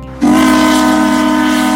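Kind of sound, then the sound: signal or alarm, steam whistle blowing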